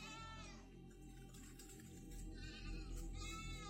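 A goat with something wrapped around its body bleats in wavering, harmonic cries at the start and again near the end, with a steady low background hum throughout, slightly muffled as if played from a device.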